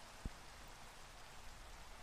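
rain falling

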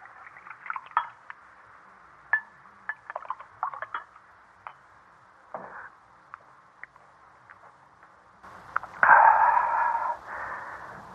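wine poured

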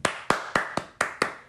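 hosts clapping hands

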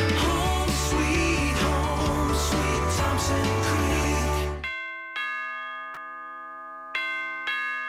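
doorbell ringing

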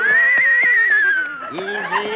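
horse neighing

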